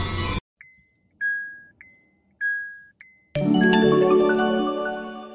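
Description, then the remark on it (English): A collision alarm sounds, a repeating pattern of short and long high electronic beeps alternating for about three seconds, then cut off by a loud, dense burst of crashing noise. “Sound the collision alarm.”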